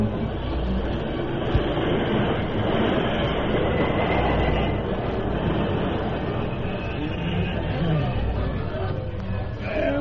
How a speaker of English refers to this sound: Jim, stop the train.